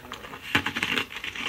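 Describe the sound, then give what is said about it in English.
Someone crunches ice cubes from his drink, a sharp crackling bite followed by a quick run of brittle, gritty crunches in an irregular rhythm, moderately loud with no talking. “he's eating the ice that came from his drink.”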